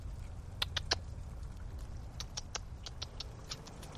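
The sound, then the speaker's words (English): A chipmunk scurries through dry leaves near a big tree at a trail entrance, in quick, light bursts of crackly rustling, with a soft outdoor background hum between the pattering steps; light rain is falling. “There's a big tree. Chipmunk.”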